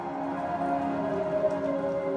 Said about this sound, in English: We are finally seeing rain. Rain has hit the Portland metro area.